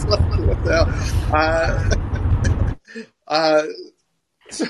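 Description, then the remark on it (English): A steady low rumble of road noise from a car being driven fills the first few seconds beneath the driver's voice, then cuts off abruptly, leaving only scattered speech in near silence. “I'm driving my car, man.”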